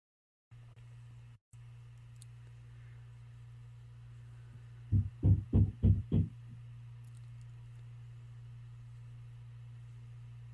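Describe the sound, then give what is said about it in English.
Five heavy, evenly spaced bangs like a fist on a door land in quick succession over a steady low hum, then stop abruptly. No one speaks. “Someone banging or knocking on my door? I know, I was wondering what that was.”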